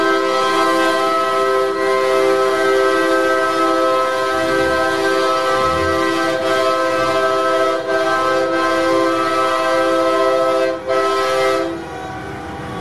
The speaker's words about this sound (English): And they are really upset about the sound of horns going honk honk. In fact, let me just play a little excerpt for you. This is a brief taste of what the people in downtown Ottawa have been hearing as part of the Freedom Convoy efforts up there.